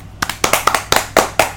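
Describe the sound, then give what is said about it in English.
A short applause sound effect: roughly eight or nine sharp, crisp hand claps in a quick, slightly uneven rhythm, fairly loud and with no voices over them. “That's not us applauding.”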